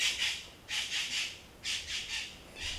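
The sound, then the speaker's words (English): A tropical bird squawks in repeated harsh bursts, roughly four groups of two or three raspy calls each, loud, with no talking. “Okay, we add this tropical bird to the 24 gurus.”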